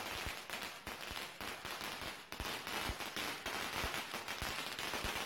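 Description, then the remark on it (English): A long string of firecrackers pops on a street in rapid, irregular bursts, dense crackling bangs layered over a hissy background, continuing steadily and loudly without pause. “If you're listening to our podcast, you're just hearing the pop sounds.”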